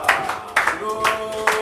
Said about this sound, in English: Clap for David. Clap for David.